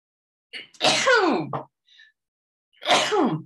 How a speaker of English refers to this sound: Excuse me, I just have to sneeze. Oh no.